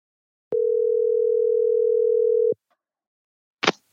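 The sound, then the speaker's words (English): A steady, unbroken telephone dial tone of an outgoing phone call to a friend hums loudly for about two seconds and then cuts off, followed after a short silence by a brief noisy click. “A phone call.”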